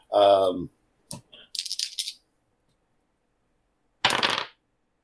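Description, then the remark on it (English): A brief voiced exclamation, then dice clatter and rattle in quick bursts across a hard surface, followed by silence and one more short rattling tumble. “Damn, man, these dice are on fire.”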